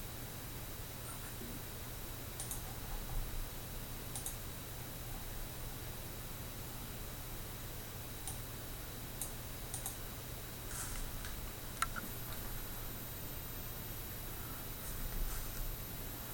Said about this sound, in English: What's a clicking going on? Oh, video. No, we don't want video.